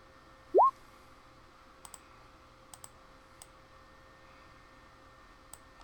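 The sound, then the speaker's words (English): A brief rising whistle-like tone opens, followed by a few scattered, sharp clicks of dice being rolled for a dexterity saving throw, tapping on a hard surface, fairly faint and spread over several seconds with no talking. “My dice finally like me again.”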